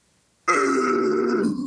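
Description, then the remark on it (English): After a short silence, a chorus of audience voices imitates growling to say goodbye: a loud, sustained, raspy roar held steady for over a second with rough low and mid tones. “Let's give the growlers our best growls to say goodbye.”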